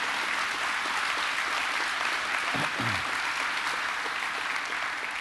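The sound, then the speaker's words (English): Steady applause from a large audience fills the whole stretch, a dense even patter of many hands clapping at once with no voices standing out. “That would be a good time to applaud while I get myself together a little bit.”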